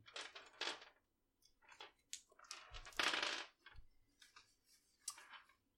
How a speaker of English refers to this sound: go ahead and roll me dice percentage real quick.